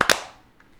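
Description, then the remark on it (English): A loud, sharp hand clap made to sync audio, heard as two crisp bursts a split second apart, that quickly rings out into quiet. No one speaks. “And then we'll do a clap sync.”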